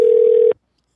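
A steady, loud telephone tone holds for about half a second, then cuts off abruptly into silence. No keypad beeps or voices follow.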